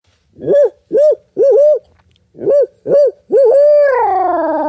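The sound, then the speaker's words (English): A man imitates a hoot owl with his voice, giving a rhythmic series of loud hoots in two bursts, ending on a long drawn-out quavering hoo that slowly fades. “Yep, rip out an owl hoot.”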